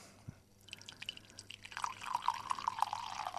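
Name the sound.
tea being poured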